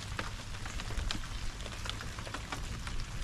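Steady rain pattering on a hard surface, a dense hiss of countless drops with scattered sharper ticks, fairly constant in loudness throughout, with no voices.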